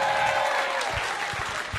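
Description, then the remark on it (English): A live show audience claps for the bar staff, a dense, continuous patter of many hands with no gaps, holding at a fairly even loudness from start to finish. No one speaks. “What I want you to do before you go, give it up for the bar staff that have served you all night.”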